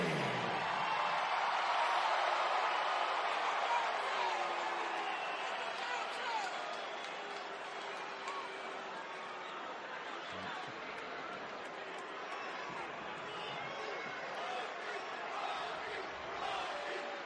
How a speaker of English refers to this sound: And yet, our stadium is still cheering. Well, it started with the Rock and chant, then turned into Cody.